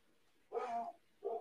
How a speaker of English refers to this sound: Fucking dog, it sounded like them pit bull got scared.